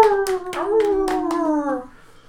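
A long, wavering howl, likely a human voice imitating a wolf, slowly falls in pitch while several sharp hand claps ring out in a quick, uneven burst, both loud.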